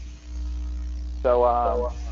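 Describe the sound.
A steady, low electrical mains hum from a remote participant's line on a call drones through the whole stretch, with a brief burst of someone speaking over it near the end.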